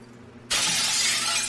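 A toilet bowl breaks with a sudden, loud shattering crack after a moment of quiet hum, then a bright, harsh crashing rush continues steadily to the end as water goes everywhere. No one speaks.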